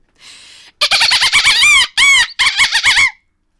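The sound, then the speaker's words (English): A human voice imitates a dolphin: a brief breathy hiss, then rapid bursts of high, sweeping squeaks and clicky chirps in three quick loud runs, alone without talk. “I could do a great dolphin if we can take a moment just to redeem my animal making sounds.”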